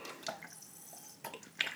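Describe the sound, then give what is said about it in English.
Someone quietly sips water from a drink bottle, a few soft wet slurps and small liquid clicks spaced out over a couple of seconds, with no talking. “sorry, I'll just do some branded content for my employer as I have a sip of water.”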